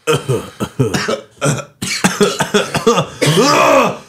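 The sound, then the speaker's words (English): A loud run of harsh coughs and throat clearing, about eight quick bursts in a ragged rhythm, ending in a longer, strained raspy clear of the throat. “I'm still coughing.”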